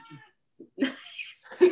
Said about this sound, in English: My cat says hi. Sorry, he's decided that it's time for attention.